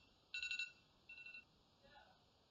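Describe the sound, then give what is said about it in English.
A timer goes off with bursts of rapid, high-pitched electronic beeps: a loud first cluster, a second slightly softer one, then a faint trailing chirp over a low background hum. “Hey, there's a timer.”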